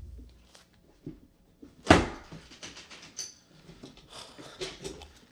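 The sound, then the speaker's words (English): A door shuts with a sharp, solid thump, followed by a few seconds of small clicks and metallic rattles as the door is locked. “Okay, had to make sure the door was locked, windows closed, everything's ready for what I'm about to ask.”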